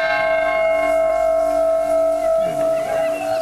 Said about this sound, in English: Joe got to ring the peace bell, which commemorates the 10th anniversary of the Good Friday Agreement.